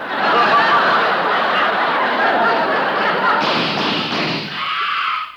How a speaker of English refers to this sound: did you hear those shots? They came from the office next door.